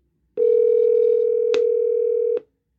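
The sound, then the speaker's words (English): A steady, loud telephone dial tone hums for about two seconds, broken by a brief click midway and cut off with another click, as a phone call is placed to a guest. No voices are heard. “Let's go to the phone, shall we?”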